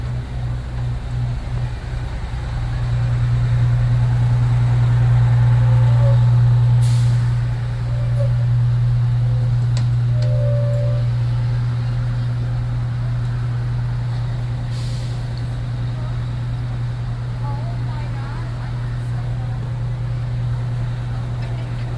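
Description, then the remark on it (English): A large bus engine rumbles steadily at idle throughout, low, with a couple of short hissing bursts like air brakes releasing partway through, as a passenger gets off at the back of the bus. “In the back of the bus. He was getting off.”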